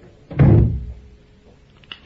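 A door shuts with a single solid, low thud, its boom fading over half a second, followed by near silence and a faint click or two.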